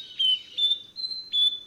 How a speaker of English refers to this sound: I laugh every time I hear this character, but I actually love it. To me, it signifies warmth and beauty. To get more information on this not-so-incredible songster, Google the Nightingale Wren.